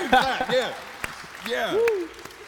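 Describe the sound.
A small audience responds with scattered, uneven claps and rising whoops and cheers from several voices, lively but thin rather than a full, sustained ovation.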